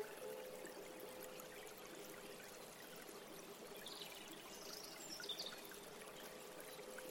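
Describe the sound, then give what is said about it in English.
A small stream in a park burbles and trickles over rocks in a steady, continuous wash, fairly soft and close by, with a few faint high chirps briefly rising above the water midway. “A small stream is nearby, and you can hear the sound of the water as it flows over the rocks.”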